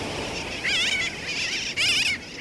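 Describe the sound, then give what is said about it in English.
Sooty terns calling in a dense, overlapping chorus of harsh, wavering cries that rise in repeated bursts over a steady background hiss of a busy colony, with no voices. “During and after a hurricane, sooty terns, like the ones we're hearing, and other seabirds from the Caribbean turn up widely in our country's interior, blown hundreds of miles from the sea.”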